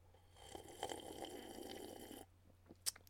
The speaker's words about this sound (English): I'm just going to take a final sip of my beverage.